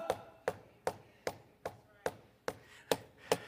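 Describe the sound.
A steady series of about nine sharp knocks, evenly spaced and unhurried, like rapping on a wooden door, at modest volume with no talking.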